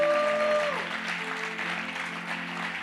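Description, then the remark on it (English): An audience breaks into steady applause to give God a hand clap, dense overlapping hand claps filling the room, while a sustained organ chord fades beneath and settles into a low held tone. “If you receive something, give God a hand clap for that.”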